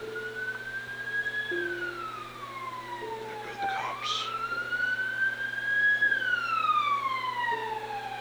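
An ambulance siren wails as it passes outside, its tone sliding slowly down and back up in long sweeps, fairly loud and steady over a low background hum, with no voices.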